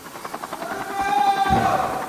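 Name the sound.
helicopter flying overhead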